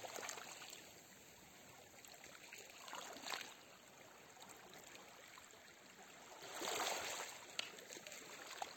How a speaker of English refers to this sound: Do any subconscious programs that no longer serve you just fade away and be taken away by the ocean waves.